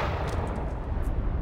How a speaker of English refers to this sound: Evans told his gunnery officer to target the leading ship and open fire. With all 5 turrets slaved to the gun director's radar, gyros, and analog firing computer, Hagen closed the firing key and all 5 of Johnson's turrets salvoed together.